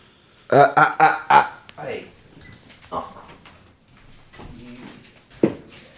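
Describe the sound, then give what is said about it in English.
A misbehaving dog lets out a quick run of loud, high whimpering cries, then keeps making softer whining noises, with a person's voice faintly heard alongside. “When we, the dog was misbehaving.”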